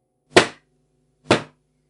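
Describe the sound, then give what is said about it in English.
Two loud, sharp knocks on a front door, roughly a second apart, each a heavy thud with a brief resonant tail, with silence between them and no voices. “The family were just sitting down to dinner when there were three loud knocks on the front door.”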